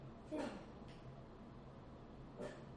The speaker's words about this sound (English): If you all could see the ferocious dog in the corner. The meanest dog. I just want him. I want to cuddle him. Little 7-pound fluff ball. Literally.